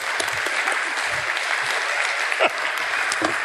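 A crowd claps steadily for a group of volunteers, a dense, even wash of applause that holds at a strong level throughout, with a few faint cheers or voices mixed into the clapping.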